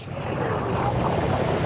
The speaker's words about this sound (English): At the beach, bro.